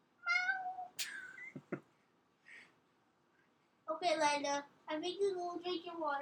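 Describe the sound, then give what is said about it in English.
A cat named Lila meows: a couple of short, bright calls, a brief pause with faint sounds, then a long, loud, wavering string of drawn-out meows. “Right, Lila? Hey, Lila. Say hello to all the people.”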